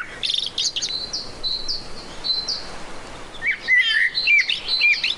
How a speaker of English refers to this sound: Ooh, sounds a bit blackbirdy. Mm-hmm. Could be. Yeah. Could be blackbird. It's the common blackbird.